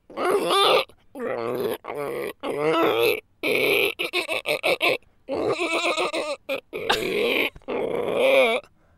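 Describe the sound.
A voice imitates an ostrich-horse animal call: a run of loud, strained grunting and groaning bursts with wavering pitch, broken by short pauses, some choppy and rapid, over about nine seconds.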